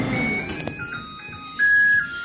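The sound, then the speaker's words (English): A cheerful microwave done chime: a short electronic tune of a few pure, bright beeping notes stepping between pitches, with the last held note a little louder. No talking. “My favorite, I have to say, was the happy microwave oven.”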